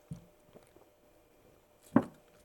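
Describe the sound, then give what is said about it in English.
Swallowing from a Publix spring water jug: a soft gulp, a few faint mouth sounds, then one louder, wetter gulp after a quiet pause. No one speaks. “bear with me while I take a sip from the chalice.”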